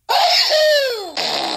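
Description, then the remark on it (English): A portable novelty fart machine, played by hitting two buttons, makes a loud, buzzy fart that slides downward in pitch, then cuts to a second, raspier and breathier blast. No one speaks. “First of all, congratulations on the manual dexterity it required to hit those two buttons on your portable fart machine.”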